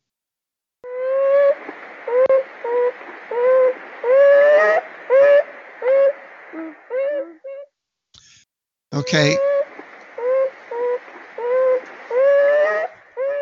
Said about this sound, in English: And the answer was, it was a beaver. You were listening to the sound of a beaver.